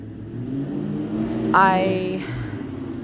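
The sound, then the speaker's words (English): A car engine roars, its pitch climbing sharply as it revs and accelerates past, loud over a steady low rumble of traffic. “I hate it when people blast their engines like that.”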